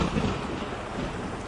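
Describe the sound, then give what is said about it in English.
A steady wash of heavy rain with a low rumbling thunder underneath, dense and continuous throughout, fairly loud with no voices. “Who shot the rain, yo?”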